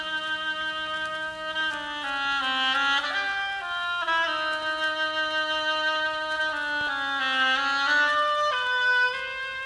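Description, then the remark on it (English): An oboe, representing Sonia the duck in an orchestral tale where each character is an instrument, plays a slow, nasal melody alone, its reedy tone gliding down and back up through several sustained notes at a steady, moderate loudness. “Sonia the duck by an oboe, like this.”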